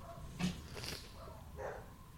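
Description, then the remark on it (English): A dog named Benny lets out a couple of short, excited barks followed by a high, eager whine, with no one talking. “Yeah, Benny the dog is pulling a full rocket.”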